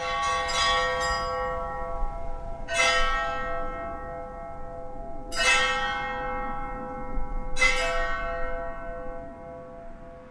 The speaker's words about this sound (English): So we cut the bottom off the welding tanks, hung them up, and then we beat them with ball peen hammers.